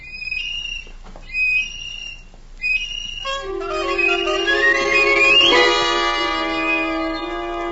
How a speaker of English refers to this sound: Now I have an adult's appreciation of how horrible it must have sounded. But at the time, I felt persecuted, and it made the little tin whistle seem more important to me than ever.